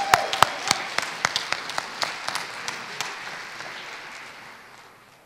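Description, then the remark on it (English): A round of applause from a crowd, given for Jesus after a testimony of healing, with sharp individual claps standing out early before the clapping thins and fades away over about five seconds. “I think that needs another round of applause for Jesus.”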